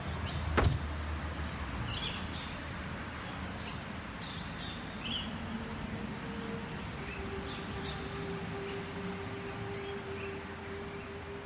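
A sharp click, then a glass sliding door rumbling open with a steady grinding rush and a faint rising whine, while small birds chirp quietly in the background. No one speaks.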